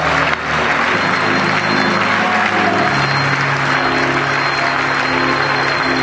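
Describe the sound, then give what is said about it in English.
A church audience claps their hands to the Lord in a dense, sustained burst of applause, loud, with a low hum of voices or music underneath throughout. “Let's clap our hands to the Lord and lift our voices unto God one more time.”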